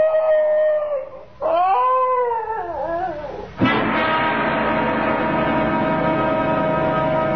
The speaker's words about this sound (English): Why, it's the Higley dog. Patsy. Oh, here, Patsy. What's the trouble, doggy? Miss your mistress, is that it? Do you miss your mistress?